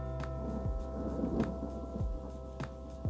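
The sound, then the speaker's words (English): A low, steady rumble of thunder from a storm rolls on in the background, punctuated by a few brief crackling bursts. No one speaks. “But in the backdrop, you might hear the thunder going off.”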